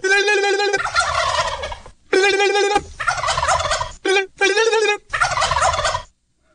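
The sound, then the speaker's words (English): Real wild turkeys gobble loudly in about five rapid, rattling bursts with brief gaps, mixed with turkey calls made by a person calling them, then the sound abruptly stops. “And some wild turkeys, real ones, and me calling them.”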